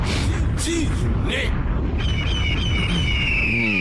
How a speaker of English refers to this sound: Did you see the falcon again? Yeah, was that it? Which one? I don't know what the fuck. Honestly, I'm calling an eagle, a hawk, and a fucking falcon. Falcon. So I don't even know what it is. It's a big-ass bird, though.